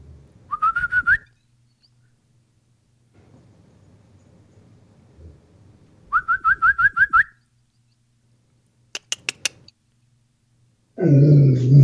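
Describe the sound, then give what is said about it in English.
A puppy lets out high, rising whines and yips in two quick pulsing bursts, with soft rustling between and a loud scuffling noise at the end. “Good puppy.”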